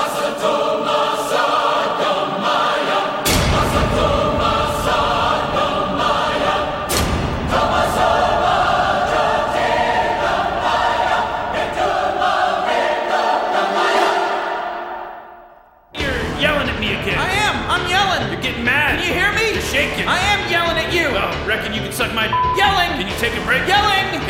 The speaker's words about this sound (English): Well, our live audience isn't going to be able to hear it, but I want you to start the Rage Corner music right now, please.